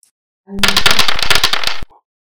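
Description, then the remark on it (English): Five twelve-sided dice, part of a roll of ten d12s, clatter across a table in a loud, rapid burst of sharp clicks and knocks lasting just over a second, then stop abruptly. “Rolling the dice. And here comes another five.”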